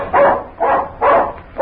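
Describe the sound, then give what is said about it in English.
A dog barks repeatedly, four loud, evenly spaced barks with short pauses between them, no voices alongside. “Yeah, now you got to bark it again.”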